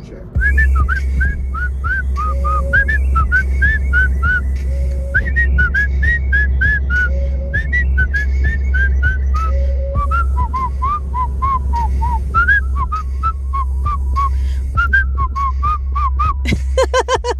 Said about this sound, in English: Now that I force you all to hear my whistling.